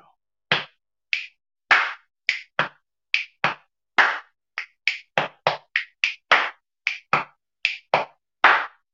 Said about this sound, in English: Hit, snap, clap. Part number 2, snap, hit, snap, hit, clap. Part number 3, snap, snap, hit, hit, snap, snap, clap. Part number 4 is part number 2, which was snap, hit, snap, hit, clap. So that's all 4 parts. I'll play it for you all through.